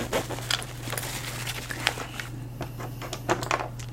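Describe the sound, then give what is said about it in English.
Pens clatter one after another back into a holder, a quick irregular run of small plastic clicks and taps over a low steady hum, with no talking. “Just gonna put the pens back.”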